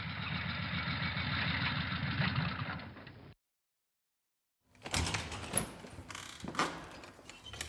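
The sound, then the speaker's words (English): A motorbike arrives and idles with a steady, throbbing low rumble, then cuts out; after a brief silence come louder clunks and rattling mechanical noises. “as Queenie is just arriving on her motorbike.”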